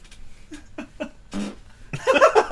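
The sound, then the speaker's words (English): A few short, sputtering fart noises, ending in a louder, longer buzzy blast, with no talking over them. “farts at our opinion on it.”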